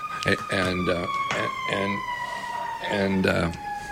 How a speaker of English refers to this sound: So there's, can you hear those sirens when you're... I can hear them. I don't know if the radio listeners can hear them.